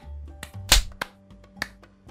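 A few sharp hand claps, about four, spaced irregularly over a low steady hum, with the second clap the loudest and the rest crisp and brief. No one speaks.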